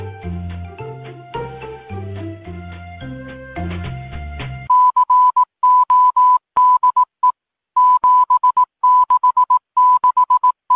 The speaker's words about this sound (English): But the Morse code translated to the code 7667.